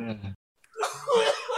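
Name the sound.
coughing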